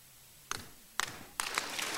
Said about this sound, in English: Listen, stop clapping. I don't need it.